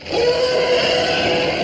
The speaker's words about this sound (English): This was one of those times when Ben used the Fox sound library. Here's a clip of some elephants from the 1958 movie The Roots of Heaven.